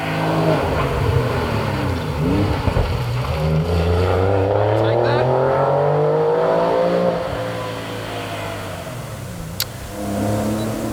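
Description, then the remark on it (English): A Porsche 997 GT3 RS roars by at racing speed at Simmons Plains in a competition special for over-1990 cars, its loud engine note sweeping up and down in pitch as it passes, with a man speaking briefly over the noise. “So there's a 997 GT3 RS coming through.”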